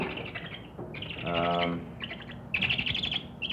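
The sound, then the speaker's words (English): A young Richardson's owl, brought out of its cage, calls with a run of high, raspy chirps, broken by one longer, buzzy, harmonic screech midway, then louder chirping bursts at the end. “brought a Richardson's owl out of its cage to show us and let the boys feel the soft feathers on the top of its head.”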